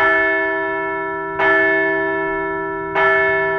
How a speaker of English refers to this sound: So let's ring the bell for Philly Rob's Canadian success.